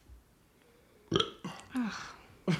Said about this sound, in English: Interject with the burp. Sorry.